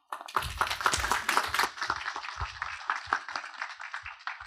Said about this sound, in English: Well, since you was already clapping, go ahead and clap it up for the messenger. Yeah, I think she did an amazing job.